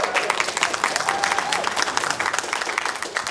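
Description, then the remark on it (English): An audience claps steadily for a few seconds for a quiz contestant, a dense, crackling wash of many hands at an even volume that holds throughout without building or fading. “But anyway, big round of applause for Dave anyway.”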